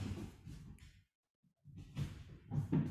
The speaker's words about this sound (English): Oh, my dog's got a ball in the hallway. Apologies. I could hear this big rumbling. I couldn't work out what the hell it was.